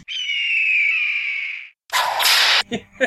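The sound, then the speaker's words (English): A long, piercing hawk-like screech sound effect fades out, then a loud whip crack whooshes through the air, followed by a couple of short, sharp snaps. No one speaks. “Why a whip? It's perfect, but why a fucking...”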